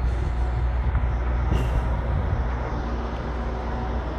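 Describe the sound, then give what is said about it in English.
Heavy trucks rumble and idle at a truck stop in a steady low roar, with a brief hiss of an air brake releasing partway through amid constant engine noise. “Truck stop, more like a truck start. Am I right? Constantly going.”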